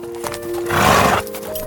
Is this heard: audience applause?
no